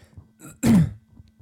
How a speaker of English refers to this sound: Yeah, I don't know what's happening. I'm all of a sudden just like can't talk without coughing like crazy.